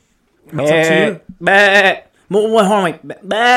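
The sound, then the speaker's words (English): A person imitates a mountain goat's bleat with four loud, wavering, nasal calls in quick succession, each held for about half a second with short gaps between. “Can you give me the sound of the mountain goat?”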